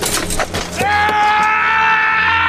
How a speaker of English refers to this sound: So yeah, that is a sheer cry of pain that actually made it into the movie. Ugh, that hurts to hear.